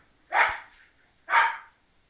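Two loud dog barks about a second apart, each a harsh burst that fades quickly, with quiet in between and no talking.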